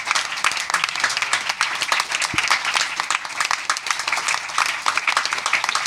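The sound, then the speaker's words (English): A crowd applauds steadily for the startup competition winners, who stand up; many hands clapping in a dense, continuous wash of sound that stays fairly loud from start to finish, with no speech over it. “Can I just quickly have all the winners stand up and we're going to clap for them?”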